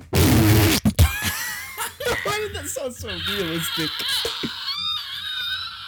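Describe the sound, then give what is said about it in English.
A person blows a low, muffled, rumbling fart imitation, as if from inside someone's body, then breaks into snickering laughter with voices chattering over it. “Dude, actually, what would a fart sound like if you were in someone's body?”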